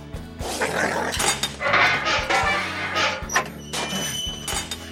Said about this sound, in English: You damn dog!